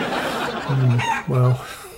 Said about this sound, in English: the old hens didn't speak English or understand Pete's need for silence, and the old birds began to chatter away